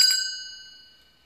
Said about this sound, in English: We're going to hold that breath and then we're going to sigh it out. We're going to do that 3 times and I'm going to ring the bell.